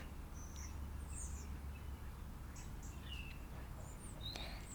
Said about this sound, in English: I'm just going to be a little bit quiet a second and see if you can indeed hear the birds. You might have heard a car beep there as well